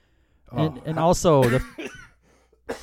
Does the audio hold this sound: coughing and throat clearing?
yes